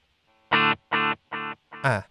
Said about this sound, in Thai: ใช่ครับเป็นคีรีคาร์เวนครับผมเป็นดีเลย์กับรีเวิร์สผสมกันก็คือผมต้องการดีเลย์สองตัว อ ันนี้ดีเลย์ตัวเดียว นี่คือการดีดหนึ่งครั้ง